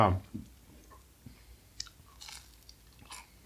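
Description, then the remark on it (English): Chewing of crunchy food, with several irregular crisp crunches spread over a few seconds, fairly quiet and with no talking over them. “I hope you can hear the crunch and how good this is. So crunchy.”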